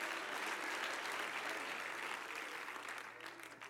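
A crowd claps steadily in praise of the Lord during a sermon, a dense wash of many hands filling the whole stretch before thinning slightly toward the end.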